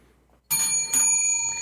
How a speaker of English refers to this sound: Hey, let's hit our bells and just be cool and move on. Ready?